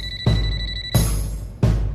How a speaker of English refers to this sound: So will these people give in to temptation now that their phones are literally calling out to them?